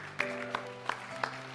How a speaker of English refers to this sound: Can you just give a round of applause to this mighty man of God?